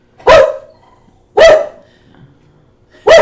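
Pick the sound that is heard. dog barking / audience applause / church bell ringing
dog barking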